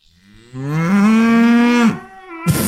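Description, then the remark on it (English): A single long, low cow moo, loud, holding steady for over a second before trailing off, followed by a brief breathy noise. “I stuck one moo.”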